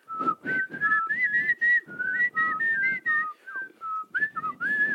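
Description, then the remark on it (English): Small hand-held whistles tooted over and over in quick, uneven bursts, sometimes two pitches at once, fairly loud with breathy noise underneath and no talking. “Well, I have these whistles.”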